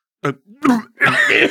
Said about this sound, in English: I cough up a little bit of water on my tactical jacket. Okay, I think I'm good.